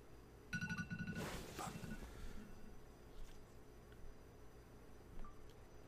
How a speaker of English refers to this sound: Sorry, I had a notification interrupt the video. An alarm that I had on. Sorry about that.